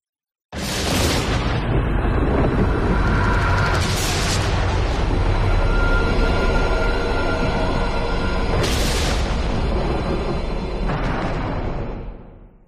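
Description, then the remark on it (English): Loud, rolling thunder picked up over a microphone rumbles steadily for about twelve seconds, with sharper crackling bursts at the start, around four seconds, and twice more near the end before it fades. “Does that ominous thunder come in, by the way, over the mic?”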